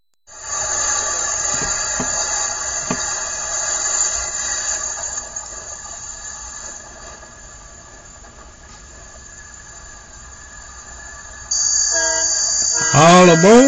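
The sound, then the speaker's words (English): A train sound effect: a long, loud horn blast with a rumbling rail hum beneath it, swelling again near the end with bright, shifting whistle tones, and no voices. “All aboard, get aboard this train and ride.”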